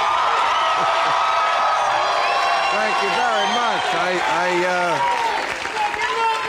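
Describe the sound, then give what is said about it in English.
A loud, steady roar of audience applause and cheering fills the whole clip, with whoops in the mix, while a man speaks briefly over the noise. “Sounds like a hot crowd, I can tell.”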